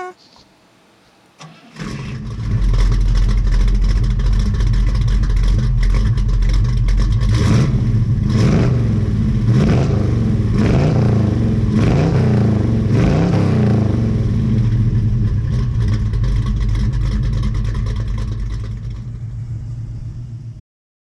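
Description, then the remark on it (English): A car engine fires up after a brief quiet moment, then rumbles loudly, with several throaty revs rising and falling midway before settling back to a steady idle. “Is it a car? Yes, sir.”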